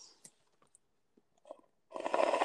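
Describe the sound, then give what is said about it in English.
A few soft mouth clicks and small wet noises, then a loud slurping sip of tea that fills the last half second. No one speaks. “That's me sipping the good tea.”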